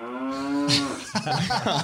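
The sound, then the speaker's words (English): A single drawn-out cow moo, loud, with a rich droning tone that lasts under a second before giving way to voices talking over a busy background. “We got those up in Wisconsin. We got a couple cows.”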